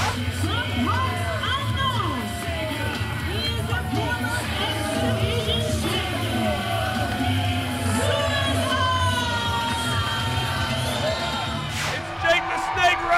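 A dense, steady roar from a wrestling crowd on its feet at Southern Honor Wrestling's Summer Heat event in the Action Building, with scattered whoops and shouted voices rising over the cheering and no pause in the noise.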